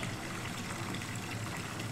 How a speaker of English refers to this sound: Hang on, let me flush another time. Whoa, it's like a whitewater rapid. It's like fast all of a sudden.